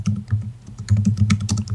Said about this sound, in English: You can hear me typing, right? I think so. Yes.